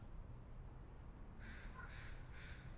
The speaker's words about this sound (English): That's a crow. That's not a him. Crow. Yeah, that's a crow. It sounds like. No, he's saying get out. Yeah. It's like a wounded animal.